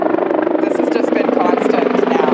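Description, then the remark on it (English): A helicopter drones loudly and steadily, its dense, rumbling engine and rotor noise filling the whole stretch without a break as it flies overhead. “Are the helicopters flying overhead?”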